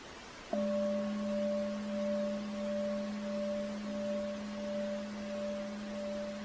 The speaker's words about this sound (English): So I'm going to be ringing the bell.